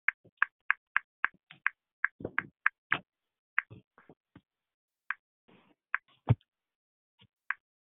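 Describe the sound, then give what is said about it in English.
Someone types on a braille writer: a quick, irregular series of sharp mechanical clacks, some with a heavier thunk, with brief pauses between bursts and no one talking. “Honey, who typing in Braille?”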